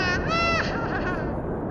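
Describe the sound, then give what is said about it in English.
A horse snickers in a park in a single drawn-out, wavering call with a shaky, trembling pitch, fading off toward the end over a steady background hiss. “Kara walked up to William, now a horse snickering in the park.”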